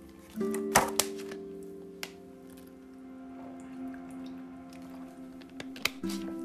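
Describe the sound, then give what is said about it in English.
Wet mouth sounds: a few sharp clicks and squishy swallowing noises with a steady low hum behind, as someone gulps water to wash down an allergy pill in the morning. “Sorry, taking my allergy medicine.”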